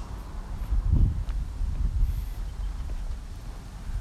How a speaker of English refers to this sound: Windy as a motherfucker out here, boy.